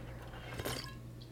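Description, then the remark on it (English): A brief sip from a glass of fizzy soda water, with a short wet slurp in the middle over a low, steady background hum. “I always have to have a beverage when I'm talking, or I'm in session, or I'm running a group, and because now I drink soda water, I'm just burping a lot.”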